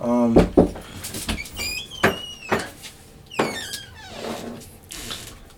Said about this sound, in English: Somebody. Kicked in the door.